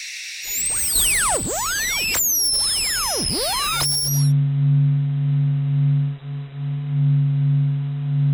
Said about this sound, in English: On the topic of white noise, this sound is the closest I could find on NASA's website to the stereotypical hum of the emptiness of space. It sounds almost like a Tibetan singing bowl, a constant relaxing hum that I can almost fall asleep to.